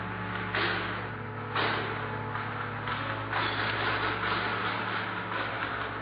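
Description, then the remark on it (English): The large doors at the main entrance of a church swing open amid a steady low hum, with a few dull thuds and bursts of rustling, mechanical noise spread over several seconds. No one speaks. “the doors at the main entrance to the church opened.”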